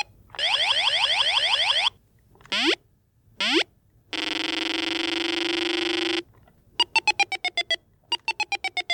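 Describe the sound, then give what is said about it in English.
Sound effects from the 1979 electronic board game Stop Thief, running on a fresh 9-volt battery, playing the thief's movements: a warbling siren-like sweep, two quick rising chirps, a long steady buzzy tone, then a rapid series of short beeping pulses, all synthetic and fairly loud with no talking. “I'm going to play a few sound effects from it.”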